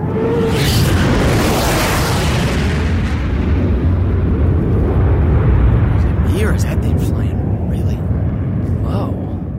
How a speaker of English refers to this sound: What the fuck's that? Holy shit, it's a fighter plane. Guys, look! What the hell's it doing all the way out here?